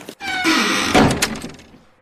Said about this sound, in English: They didn't stop to look, just bolted into the vessel, feeling those heavy doors close safely behind them.